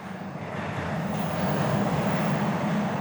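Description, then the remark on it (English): A Red Line subway train in Boston rumbles along the tracks, a loud, continuous roar with a deep low hum that swells slightly and holds steady throughout, with no voices. “Take the sound of the Red Line train in Boston.”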